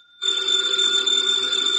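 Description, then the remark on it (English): A telephone bell on the desk in Nero Wolfe's office rings loudly and steadily, a bright continuous metallic trill starting abruptly after a brief quiet moment and sustaining to the end, with no voices. “The phone, if you please, Mr.”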